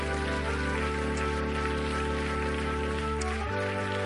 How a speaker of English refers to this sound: give the Lord Jesus a great big hand clap of praise.